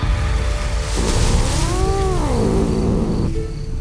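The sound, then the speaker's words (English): A single thin, drawn-out meow from Yuki, a white cat under a hedge, rises and then sags in pitch, sounding frail and sickly, over a steady rushing background hiss. No one speaks. “Otoyo heard a sickly mew from under a hedge and tried to coax Yuki out.”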